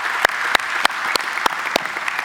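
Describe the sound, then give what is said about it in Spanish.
Audience applause honoring those who have served in the armed forces: a dense, steady wash of many hands clapping, with a few sharp, louder claps standing out at a regular beat, as if some people clap in rhythm. No one speaks. “Y por eso en esta tarde queremos reconocer a aquellos que han servido en alguna de las ramas de las Fuerzas Armadas y lo queremos hacer con un fuerte aplauso.”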